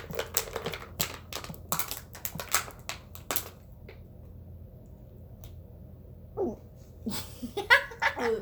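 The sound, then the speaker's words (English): Someone drinks water noisily, with a rapid run of wet slurps and gulps over the first few seconds, then a quieter pause and a couple of short breathy vocal sounds. “I'm normally drinking water. You sound like the dog now.”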